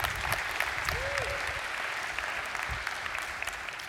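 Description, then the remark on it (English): A church audience applauds the people who have just taken part as they go to sit down, a dense wash of clapping that holds at an even level for the whole stretch without pause or build, with a faint murmur beneath. “Let's give them a hand.”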